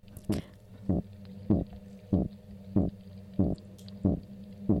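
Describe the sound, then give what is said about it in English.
Eight short, low, throaty grunts from a male oyster toadfish with eggs in his nest repeat at a steady, even pace, each a brief rough burst over a continuous low droning hum. “And the third sound, again, is the grunt.”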